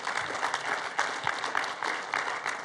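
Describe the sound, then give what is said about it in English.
A church audience applauds together to welcome first-time visitors, a steady dense patter of many hands clapping at once, sustained and fairly loud throughout with no speech over it. “Hey, you know, we just love to welcome you around here, and we do that around here by honoring you, and we do that by clapping for you.”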